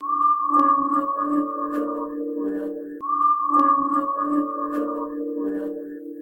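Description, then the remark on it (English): A person bending down and whistling a tune into a small sewer drain hole in a street curb: a steady, fairly loud whistled tone with a hollow, ringing resonance, sounding twice in near-identical three-second phrases, with no talking. “That's whistling into a little sewer drain, you know, those kind of holes in the curb there.”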